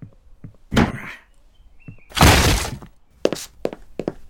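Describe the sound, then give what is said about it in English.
Heavy wooden thuds and a loud crashing impact as a door is battered and smashed in, followed by a few sharp knocks and clatters of debris, forceful with no talking. “Rock smashes down the door”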